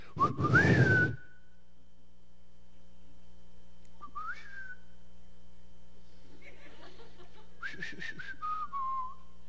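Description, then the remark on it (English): A parent whistles a short rising-and-falling signal call to his son three times, each a quick sliding tone with brief pauses between, clear, with faint murmur underneath. “I had a different whistle for every one of my kids.”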